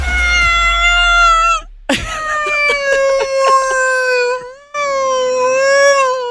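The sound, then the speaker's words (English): On a radio show, a person imitates a sea mammal as a hint for Free Fuel Friday, with three long, loud, high-pitched wavering cries, each a sustained nasal wail that bends slightly in pitch, with short breaks between them. “Making noises like a sea mammal.”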